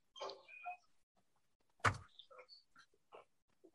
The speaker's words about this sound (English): So New Day's walking up to the... They look like they're going to rob the house. Yep. Mm-hmm. There's Big E knocking on the door.